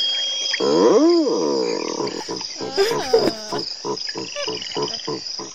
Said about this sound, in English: You're a beer ad. I'm a frog beer ad.